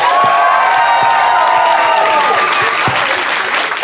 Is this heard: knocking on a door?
no